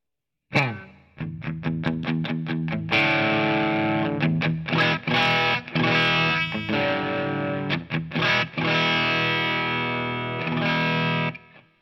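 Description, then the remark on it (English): A distorted electric guitar, played through a boost pedal and a distortion pedal, plays a riff of sharp chugging chords, then rings into sustained, saturated power chords with brief stops, loud with no talking. “I really like that distortion.”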